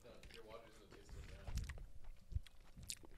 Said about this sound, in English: Did you guys chew the gummy? Yeah. What would you say the flavor was? I thought it didn't have a flavor. I feel like I feel it was so fucking sour.